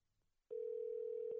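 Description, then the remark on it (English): After a short near-silent moment, the ringing tone of a phone call to a friend switches on abruptly and holds as a loud, steady electronic hum to the end, with no one speaking. “Okay, let's call him, see if he answers the phone.”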